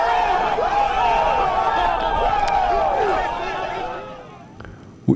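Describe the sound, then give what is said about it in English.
A crowd roars with cheers and whoops, many voices yelling together at high volume for about three seconds before the noise thins and fades, ending with a brief thump. “And the crowd goes wild.”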